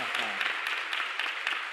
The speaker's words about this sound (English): Thank you to our marvellous captain, Captain Cunard. Let's get another round of applause for him right now. Captain Cunard.